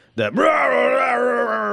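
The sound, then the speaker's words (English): A single voice imitates a neighbor who mumble-yells at passersby from behind his curtains: a loud, sustained, wordless groaning yell, a gruff mumbled bellow, starting abruptly and holding steady for nearly two seconds. “He just mumble yells at anybody that walks by, and you can't see him because he's hidden behind his curtains.”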